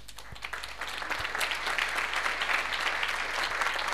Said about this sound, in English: That's the part where you clap.